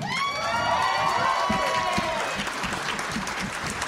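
An audience claps steadily and cheers, with high whoops and shouts rising over the applause early on. The cheering fades after a couple of seconds while dense clapping carries on loudly.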